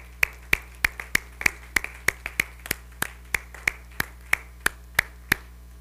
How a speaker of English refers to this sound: And we heard some great insights here tonight. You need to give the Lord and yourself a hand clap, honestly.